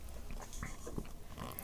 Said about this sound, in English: But, okay, let's have a slurp down on the Big M Limited Edition Blue Heaven, see what you think.